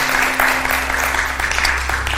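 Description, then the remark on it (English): A church audience claps together in praise of the Lord at the Prayer Cloth Anointing 2023, a dense, steady burst of applause, many hands overlapping into a continuous crackling wash, loud and sustained with no voices over it. “Give the Lord another great hand clap of praise.”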